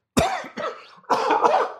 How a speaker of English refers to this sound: Excuse me for that. And I'll cough.